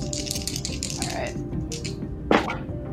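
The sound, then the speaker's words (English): Dice are rolled for a search roll, rattling and clattering across a hard surface in a quick run of small clacks, ending with one sharper knock, over a low, steady background hum. “I'm going to ask that you make a search roll, and I'll give you plus 20% to that search roll because you know exactly what you are looking for”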